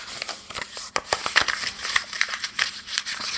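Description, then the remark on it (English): A paper letter that held two quarters being unfolded and crinkled: a run of dry crackles and rustling snaps that come in uneven bursts for a few seconds, with no talking over them. “I found the quarters in a letter.”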